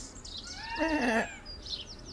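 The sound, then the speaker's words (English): A pet sulphur-crested cockatoo named Basil lets out one harsh, wavering squawk lasting about half a second, loud, with faint high chirps before and after. “He's a sulphur-crested cockatoo.”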